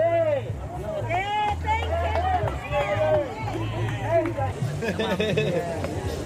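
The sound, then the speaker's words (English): A protest crowd cheers and calls out greetings to Winston Peters as he arrives at the protest site, many overlapping voices rising and falling in a steady, fairly loud hubbub with a few raised shouts standing out. “So it's just walking back to the press gallery, and I spotted Winston Peters and turned around and followed him, and now he's in the protest site getting lots of cheers and greetings.”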